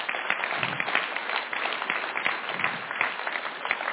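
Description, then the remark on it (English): A crowd gives a man a round of applause for about four seconds, a dense, even wash of many hands clapping at once with no pauses and no voices rising above it. “And if they just give him a round of applause.”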